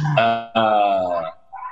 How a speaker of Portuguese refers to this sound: Olha, eu estou com esses cachorros aqui, faz parte do entorno meu aqui, do horário dos cachorros aqui na rua, espero que não se incomodem com a vida como ela é, a vida latindo ali fora.